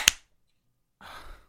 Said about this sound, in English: If you sync up to your clap, it'll sync up to my clap.